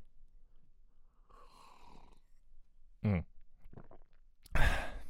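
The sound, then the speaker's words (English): A quiet slurping sip of green tea with lemon, followed by a short throaty gulp and then a loud, breathy sigh of satisfaction. No one speaks. “And it's very exciting to be able to record sitting down, see what's going on, have a few things about me, and as I said, be very very easily take a sip of my green tea with lemon, which I'm going to do now.”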